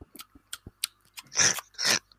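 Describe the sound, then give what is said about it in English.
Noisy chewing made by a person imitating a cat eating a mouse: a run of short wet smacks and clicks, then two louder, longer crunching bursts. No talking. “Then the burglar also would sometimes chew noisily on some stale bread and beans to impersonate a cat eating a rat or mouse so as not to alarm any sleeping person in the house.”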